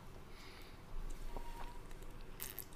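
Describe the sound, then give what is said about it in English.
A man gulps down water during a water break, with soft wet swallowing noises and a couple of brief throat clicks. Quiet overall, and nobody speaks. “Oh man, he's taking a big gulp of that water.”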